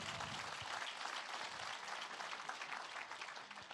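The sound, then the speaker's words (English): An audience claps steadily, a dense wash of many hands filling the whole few seconds at an even, loud level with no voices standing out. “You can clap on that one.”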